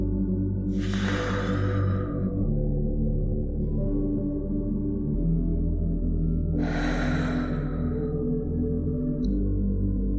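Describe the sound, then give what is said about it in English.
Two forceful, breathy exhales made without breathing in first, turned away from the microphone, as an exercise engaging the abs, one near the start and one about six seconds later, each a broad rushing burst of air over a steady low hum, with no talking. “So, what you're going to do is exhale forcefully.”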